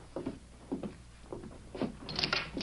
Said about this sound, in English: As soon as his visitors had left, Frank Tabor pushed back from his desk, crossed the office, and opened a door to an adjoining room.